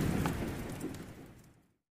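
A deep, rolling rumble of thunder over a steady hiss of rain, both fading away together into silence within a couple of seconds.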